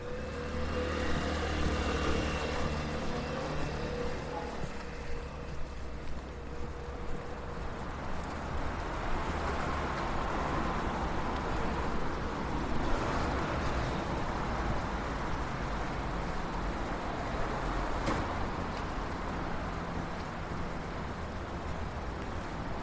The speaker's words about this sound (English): So we've reached the busy road, we've got two freeways suspended overhead, traffic all around us,